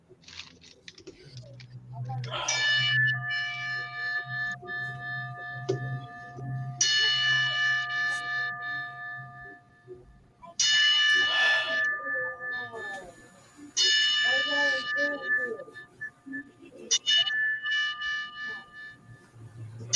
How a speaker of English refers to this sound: And as we do that, we will toll the bell 10 times to pay tribute to the late, great John Huber, a.k.a. Brody Lee, formerly known as Luke Harper.